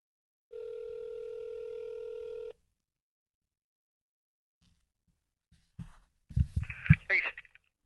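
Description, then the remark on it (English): A steady, loud telephone dial tone hums for about two seconds and cuts off, followed by a few seconds of silence before a man's voice briefly answers at the end, as a call is placed from the 511 studios into the Blitz radio show. “We're going to call in the Blitz and provide radio advice to the masses.”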